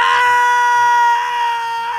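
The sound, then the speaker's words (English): A man lets out a loud, sustained, bloodcurdling scream of agony as he falls and is impaled on a wooden stake, high-pitched and strained, holding steady for about two seconds before tapering slightly, with no other voices or sounds around it. “And as he falls, he is impaled by a wooden stake, killing him. And you can hear his curdling screams.”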